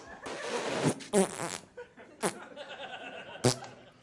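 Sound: repeated farting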